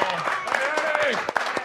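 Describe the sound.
A crowd claps steadily in a dense, continuous patter, with voices calling and cheering over the applause throughout.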